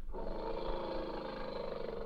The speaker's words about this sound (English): There he is. Is that it? I think the elephant deserves to have his say.